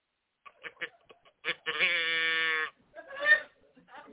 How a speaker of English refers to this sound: Got me a moo cow. Well, somebody bought it for me. I said I wanted a moo cow, so they bought me a cow in a can.